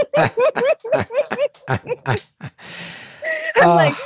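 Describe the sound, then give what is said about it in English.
A rapid run of voiced vocal sounds gives way to a long, fairly loud breathy exhale of meditative deep breathing, then a short strained vocal note ends it. “This is someone who's been trained in meditative deep breathing techniques, clearly.”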